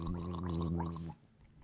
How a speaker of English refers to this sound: You let it sit for a second. Then you that's exactly what I've been doing. Gargle.